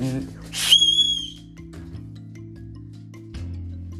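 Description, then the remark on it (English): One loud, shrill whistle blast, blown by a person at their dog, rings out for about a second, starting with a breathy burst and then a piercing high tone that trails off, over a steady low background hum. “Also, headphone users, I'm about to use this whistle on my dog.”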